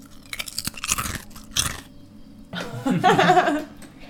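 Crisps being crunched at lunch in loud, crackly bursts of chewing, a few irregular bites, a brief pause, then a denser run of crunching toward the end.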